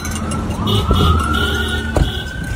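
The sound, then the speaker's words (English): Police and fire truck sirens wail steadily over the rumble of vehicle engines, with a rising tone sweeping through as a police escort of a fire truck and about four squad cars leads a bus out of South St. Paul; a short horn-like blast cuts in near the end. “And as they do now, we had members of the South St. Paul Police Department and the South Metro Fire Department doing the police escort out of town.”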